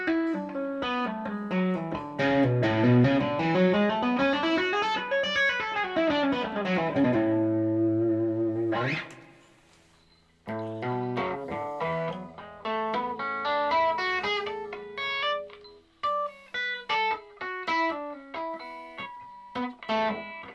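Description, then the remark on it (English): Distorted electric guitar, played with fret wraps, plays fast legato runs, hammered notes sweeping up and down the scale in smooth rising and falling patterns, then a held chord, a brief gap, and more quick flowing hammer-on phrases. “So going up, I can hammer it out of nowhere. Coming down, I'm hammering as well.”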